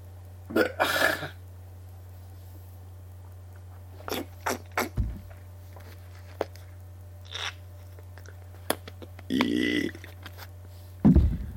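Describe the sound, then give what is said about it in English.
Several loud burps, after eating a sandwich, come in separate bursts with quiet gaps between, over a steady low electrical hum, with a few small mouth clicks scattered in between. “So that sandwich I made was really good. That's what I'm burping up.”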